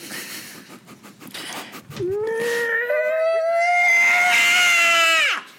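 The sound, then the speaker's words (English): A voice imitates the curdling scream of pain of the creature Jia Yowza: after a few seconds of scratchy noise, one loud, strained wail rises slightly in pitch, holds for about three seconds, then cuts off abruptly. “he screams in pain”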